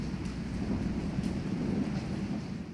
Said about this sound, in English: I send it off, and a clap of thunder and a bolt of lightning rip through the night, and the air turns that greeny shade of black with the pouring rain.